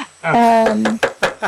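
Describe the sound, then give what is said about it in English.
A drawn-out vocal tone gives way to three quick, fairly loud knocks, spaced unevenly over about half a second. “Do you want to do that knocking thing again?”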